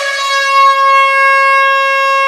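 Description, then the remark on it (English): A single loud air horn blast, one steady brassy tone held for a little over two seconds with no voices around it. “Uncle Melvin, that looks like an air horn.”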